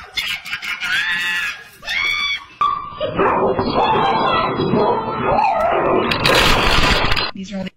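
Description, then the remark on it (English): A dog barks excitedly in rapid, high-pitched bursts at a raccoon in a Christmas tree, mixed with a person's shrieks and a loud clattering crash of something breaking. “A woman's dog was getting very animated, and it turned out because there was a creature in the Christmas tree.”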